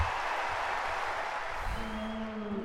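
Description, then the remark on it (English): A tennis crowd cheers and applauds in a steady, dense wash of noise, rallying behind Jabeur as she begins to struggle. Near the end, a sustained, pitched shout or tone rises above the roar. “Crowd rallying behind Jabeur here as she begins to struggle.”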